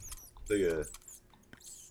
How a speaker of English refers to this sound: But I found a gerbil sound.